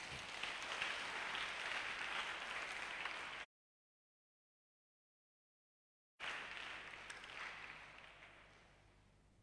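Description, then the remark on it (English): An audience claps for Jesus during a Bible reading, a dense, steady burst of applause that cuts to silence for a few seconds, then resumes and gradually tapers off. “Oh, clap for Jesus.”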